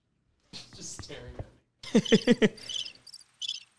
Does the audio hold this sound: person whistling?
no